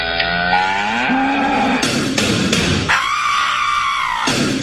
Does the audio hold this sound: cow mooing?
yes